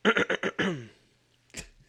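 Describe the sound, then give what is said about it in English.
Someone clears their throat: four quick raspy bursts in a row, then a longer rough rumble that trails off, followed after a brief pause by a single sharp click. “You've been doing a podcast for an hour and you need to clear your throat?”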